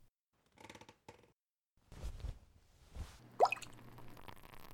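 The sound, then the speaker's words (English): Soft rustling, then a few dull low thumps, followed by a bright, rising plop as a handful of partridge berries from a satchel drop into a liquid crop spray mixture, with a faint watery trickle trailing off. No one speaks. “grab a handful of partridge berries from my satchel and toss them in.”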